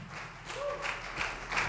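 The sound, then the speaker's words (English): A worship audience applauds with steady, noisy clapping, and a brief rising whistle sounds through it partway in. No one speaks. “So can we give a round of applause for the freedom that God's given us to be able to worship Him?”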